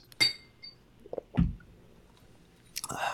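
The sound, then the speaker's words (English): Glasses meet in one bright, ringing clink as a toast at the start, followed by a few soft knocks and a dull thump, then some rustling near the end. No one speaks. “So all right, so let's make this count. Ready? Salud. Salud. Cheers.”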